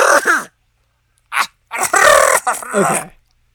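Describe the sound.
A person vocally imitates howls and screams: a short loud cry, a brief yelp after a pause, then a long, raspy, wavering scream that breaks into a second drawn-out wail. No speech.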